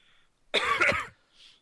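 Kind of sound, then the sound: human body sound, cough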